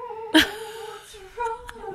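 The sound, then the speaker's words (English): A dog whimpers in thin, high, wavering whines, with a sharper yelp near the start and a couple of brief squeaky cries toward the end. “What's wrong? Oh my gosh. This is untenable. What are you doing? Come here, my dog.”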